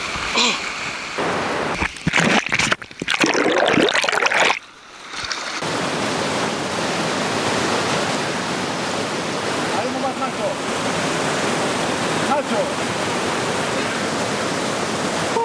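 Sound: rushing river current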